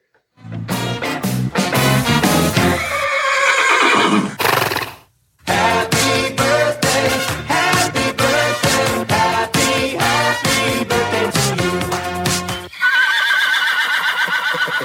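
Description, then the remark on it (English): A horse whinnies loudly with a wavering, falling call, then hooves clip-clop in a steady rhythm, ending with another shaky neigh. “But that, happy National Horse Day, everybody.”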